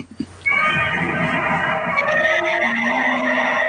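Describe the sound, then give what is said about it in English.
The Godzilla howl from the film Godzilla 98: a loud, shrill, screeching cry that rises abruptly after a few brief low thuds and holds for about three seconds, wavering slightly in pitch, with no talking. “Now you get the Godzilla 98 howl.”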